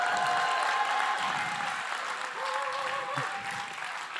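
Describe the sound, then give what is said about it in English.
A crowd claps and cheers steadily for Jesus, a dense wash of applause with shouts and whoops rising through it, holding loud for the whole stretch. “They even stand when they clap their hands for their fans.”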